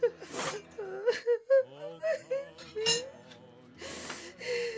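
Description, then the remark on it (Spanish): A woman cries, with wavering, high-pitched whimpers broken by sharp, breathy gasps and sobs, continuing unevenly for several seconds with no words spoken. “Pues no está llorando la boba a esta hora.”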